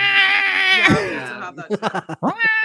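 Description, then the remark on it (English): A person imitates stray cats yowling in heat outside a window in Brooklyn: a long, strained, wavering wail that bends downward, followed by a burst of choppy, stuttering yowls and a final rising cry, loud. “All I know is that I used to have stray cats that would be in heat outside my window in Brooklyn, and it was like...”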